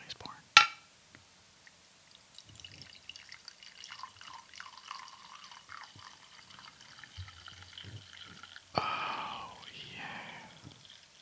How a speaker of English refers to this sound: Oh, I'm going to go ahead and pour mine in. Ritual Coffee Company. Are you ready? Oh, he's pouring.